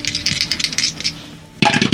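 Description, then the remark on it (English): Dice rattle and clatter across a hard surface in quick, bright clicks, a first tumbling run that fades out, then a louder second burst of tumbling after a short pause. The rolls come up 9, 4 and 11. “That's a 9 on the dice, 4 and 11.”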